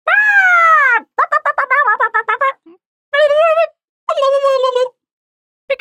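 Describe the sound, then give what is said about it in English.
People loudly imitate a bird's squawk: a long drawn-out cry, then a rapid stuttering gobble-like series, and two more shrill squawks after short pauses, nasal. “And should we squawk out?”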